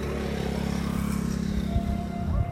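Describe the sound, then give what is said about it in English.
A motorcycle engine drones steadily as a man rides it along a running track or walking path, a low buzzing hum that holds constant before rising slightly in a brief rev near the end; no one speaks. “On the running track, there's a guy on his motorcycle on the running track.”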